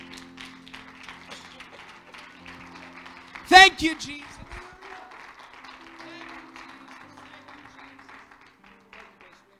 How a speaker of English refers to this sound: And one more time with a hand clap of praise.